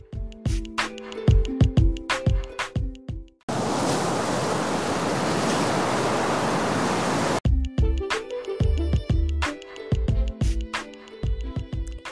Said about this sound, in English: The waves washed ashore.